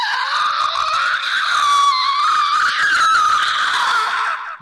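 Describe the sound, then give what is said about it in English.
A person voices a sustained, piercing monster shriek, a loud, strained scream held steady for several seconds before cutting off abruptly, with no other talk. “He has no mouth, and yet he must scream. What does that shriek sound like?”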